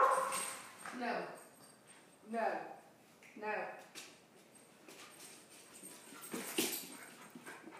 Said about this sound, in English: I'm sorry. Some good guard dogs.